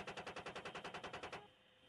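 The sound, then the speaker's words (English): A loud, rapid burst of automatic gunfire in U.S. combat footage from Afghanistan, roughly fourteen evenly spaced shots in under a second and a half, then it stops and leaves a low fading rumble. No voices. “Looks like the same sort of spraying of the explosions, doesn't it?”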